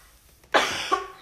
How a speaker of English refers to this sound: I am so sorry for keep coughing, but I just wish people took accountability for just life in general.